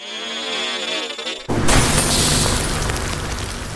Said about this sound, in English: The possessed body of Ghost of Sunken Dawn explodes in a flash of polychromatic light, instantly filling the room with dust and chunks of the facility.